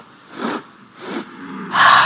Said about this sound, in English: All right, so it's going to be much faster. And the breath is like you're sniffing.